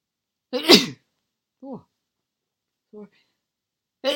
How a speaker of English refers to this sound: Oh, sorry, that's me sneezing. Wow, I'd be worrying if it was someone else, like a secret. Anyway, a secret sneezer.